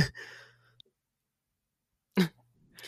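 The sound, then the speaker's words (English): A sharp cough bursts out once after a stretch of silence, bracketed by rougher breathy throat noises before and after. “I'm gonna cough.”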